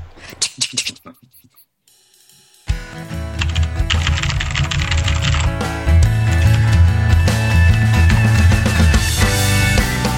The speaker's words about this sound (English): Can you guys hear my super clacky keyboard? Yeah. Yeah. It's incredibly satisfying.